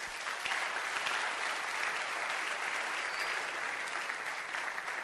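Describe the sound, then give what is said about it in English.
Steady applause from an audience fills the space, a dense, continuous patter of many hands clapping at even loudness for about five seconds with no talking over it. “Please sit down, clap your hands for them.”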